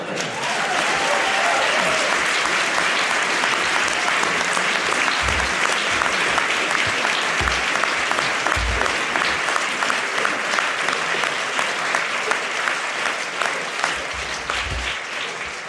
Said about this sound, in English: It's a fine rhetorical performance. I saw you applauding during that.